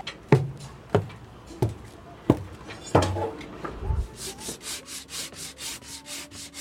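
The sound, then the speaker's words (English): Hand sanding on wood on a boat deck in a boatyard, preparing the cabin house, bulwarks and deck for new paint: several sharp scraping strokes in an irregular rhythm, followed by a steady run of quick, even back-and-forth rasps, fairly loud with no voices. “Tom is up here sanding, day in and day out, preparing our cabin house, bulwarks, and deck for brand new paint”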